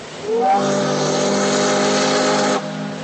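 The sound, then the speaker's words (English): A sternwheeler riverboat on the Mississippi River at New Orleans runs with a loud, steady droning tone that swells up quickly at the start, holds evenly for about two seconds, then cuts off abruptly, leaving a softer rumble. “From sternwheelers like this one to today's ocean-going vessels, commerce on the river made New Orleans one of the country's busiest ports.”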